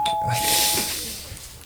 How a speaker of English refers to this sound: The doorbell rings.